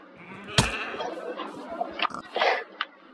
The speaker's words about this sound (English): Oh, this is the first time I've been rammed by a goat.